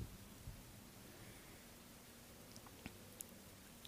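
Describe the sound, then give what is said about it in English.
Soft chewing and munching over a steady low hiss, with a few sharp little clicks and crunches scattered through. No one speaks. “Ah! Slurp!”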